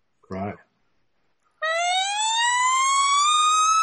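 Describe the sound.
After a short vocal grunt, a person's voice imitates an elk bugle call: a loud, sustained, high-pitched whistling tone that slowly rises and holds until the end.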